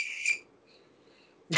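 Crickets chirp in a steady, high-pitched trill, loudest at first, then fading to a faint, thin chirping before a sudden louder burst of noise cuts in at the end.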